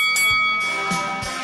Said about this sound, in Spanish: Y que suene la campana.